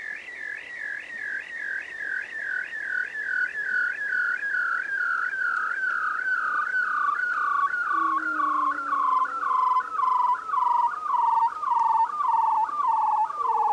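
A bearded seal's long underwater trill, a rapid warbling whistle that slowly glides downward in pitch over many seconds, with fainter low descending moans joining partway through.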